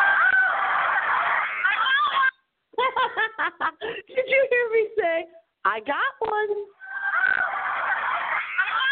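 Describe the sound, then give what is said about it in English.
A dense wash of crowd cheering at the Cavs ticker tape parade fills the opening and closing seconds, while in between a single excited voice speaks over a thinner crowd background. “So this to you is just going to sound like a crowd noise, but you just have no idea.”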